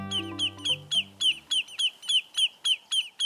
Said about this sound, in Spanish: La competencia por ser el pájaro más ruidoso es intensa. Pero cuando las aves playeras, llamadas patamarillas menores, perciben una amenaza, arman un tremendo escándalo para ahuyentar el peligro de sus nidos.